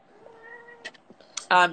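A pet cat named Maura lets out a short, loud meow near the end, preceded by quieter faint vocal tones and small rustles; the meow is clear with strong harmonic tone.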